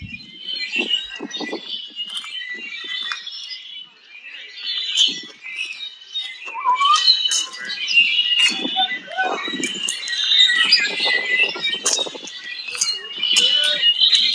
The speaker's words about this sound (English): This is the actual sound of the birds over on the hiking trail at Patagonia Lake.